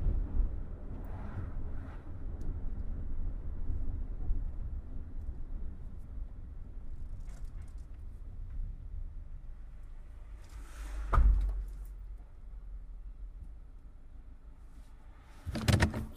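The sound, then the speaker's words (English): A heavy truck engine rumbles low and steady, then a sharp brake hiss cuts in as the truck slows and pulls over to the side of the road, with a second short burst near the end. “The truck brakes, pulls over to the side of the road.”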